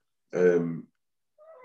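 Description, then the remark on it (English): A person voices a drawn-out imitation of a cat's meow, one fairly loud call lasting about half a second, followed after a pause by a softer, shorter vocal sound. “Like a feline thing, meow.”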